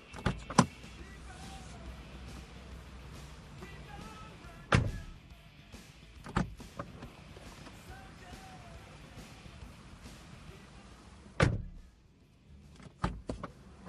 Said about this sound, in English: Dylan and I got out of the car, and Clements drove off.